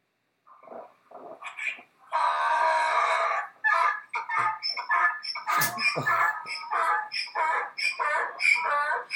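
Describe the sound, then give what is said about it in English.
A donkey brays loudly in a TV commercial, a long harsh wheeze followed by a rapid series of rhythmic, rasping hee-haw bursts lasting several seconds, with no talking. “It's just like 5 seconds of a donkey screeching.”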